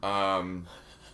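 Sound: yawn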